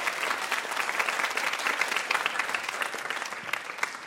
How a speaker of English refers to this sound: Big round of applause for our VIP, Julie Klausner, everybody.